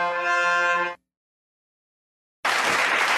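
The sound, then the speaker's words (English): A blaring, horn-like tone cuts off abruptly, followed by more than a second of silence, then a burst of loud, dense applause that continues to the end. No one speaks. “I went from blaring horse just claps in my ears like, yeah.”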